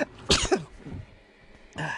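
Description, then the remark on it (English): A sneeze from the person reading a book aloud: a sharp, noisy burst with a quick second puff right after, a quieter breathy tail, then another noisy burst at the end. No one speaks. “The author, or the person who was reading the book, sneezed.”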